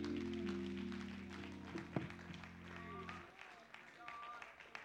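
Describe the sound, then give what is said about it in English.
A church audience claps their hands to the Lord in a steady patter over a sustained low organ chord that cuts off partway through, leaving the applause continuing alone with some voices. “Clap your hands to the Lord before you're seated.”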